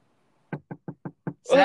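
Five firm knocks rap on a door in a quick, fairly even rhythm, clear, by someone asking to be let in, followed immediately by a voice starting to speak.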